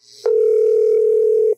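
A single loud, steady electronic tone from the answering machine of a home phone holds one pitch for just over a second, then cuts off abruptly. It sounds alone, with only faint hiss before it.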